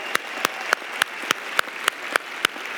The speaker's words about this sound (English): Now give the Lord a great hand clap for just a moment. Amen.